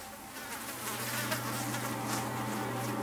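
A steady mosquito buzz drones without a break for a few seconds, a low hum with a thin whine above it. No one speaks.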